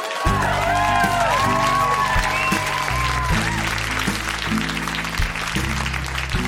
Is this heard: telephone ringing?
no